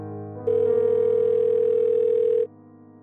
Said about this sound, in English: Coming to a stop in the van, William Breyer Sr. pulls out his phone. He clicks on the contact, son, and he hits call.